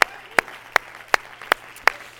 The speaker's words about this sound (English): Somebody clap your hands here this morning.